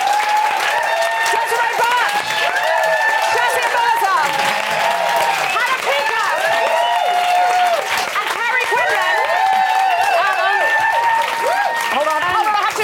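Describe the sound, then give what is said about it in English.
Loud, sustained applause from an audience, dense clapping mixed with cheers and whoops rising above it, continuing steadily for the whole stretch without a break. “So I just wanted to give everyone a huge round of applause for coming.”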